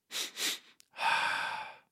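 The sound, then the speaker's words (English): A physiological sigh breathing exercise: two quick, sharp sniffing inhales through the nose, a brief pause, then one long, steady, breathy exhale through the mouth, fairly soft, with no talking. “A double inhale through your nose, a long exhale through your mouth.”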